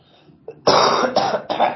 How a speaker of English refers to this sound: Oh my gosh, coughing again.